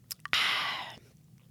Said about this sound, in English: So as I say that, I'm reaching out right now, touching my cup. I'm going to sip from it.